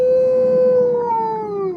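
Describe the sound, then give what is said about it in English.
A single long, eerie howl that seems to come from everywhere and nowhere at the same time holds a steady pitch and then slowly sags, rich with harmonics, sounding loud and sustained with no voices around it. “And then you all hear the sound of a howl that seems to come from everywhere and nowhere at the same time.”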